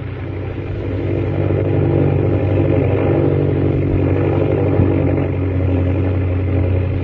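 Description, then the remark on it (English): A low-flying airplane's engine drones loudly and steadily as the plane flies low through canyons, a deep rumbling hum with layered low tones and a faint rattle. It holds an even pitch throughout, with no voices. “Jack, fly as low as you can. I can't go much lower.”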